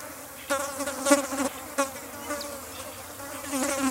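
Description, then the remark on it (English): Flies buzz in uneven bursts, their drone rising and fading as they circle and drift away, on a farm in a grassy paddock on a hill, sunny with a light breeze, with no talking. “And even the noise of flies buzzing around.”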